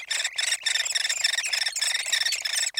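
Hairy woodpecker chicks beg from inside a nest cavity deep within a dying tree, a continuous buzzy, chattering squeal broken by brief pauses, fairly loud with no other sounds.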